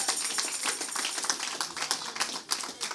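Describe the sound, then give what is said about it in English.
An audience at Faith City claps their hands together for God, a dense, steady patter of many overlapping claps that holds loud for several seconds with no voices over it. “Give God a hand clap one more time in this place.”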